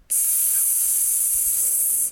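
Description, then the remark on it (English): A steady, bright sizzling hiss as a hot blow-dryer is pressed against wet skin on a stomach just after a shower, holding for about two seconds on its own. It starts and stops abruptly with no talking. “And because the water and the heat from the blow dryer, you just hear this.”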